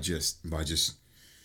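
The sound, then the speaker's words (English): A person imitates heavy, deep breathing, two raspy, voiced breaths in quick succession, fairly loud, followed by near silence. “By just deep breathing and shit and just staring and fucking.”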